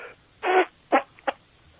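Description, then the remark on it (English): A fart-like noise mimicking a rooster's crow: three buzzy, raspy blasts, the first long and loud, then two shorter ones, with no talking. “A rooster.”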